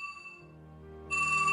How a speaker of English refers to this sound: For example, the story is told that Neil Blaney's phone rang on the night of August the 12th, when stones and petrol bombs were flying in the Bogside.